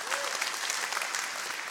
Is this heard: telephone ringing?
no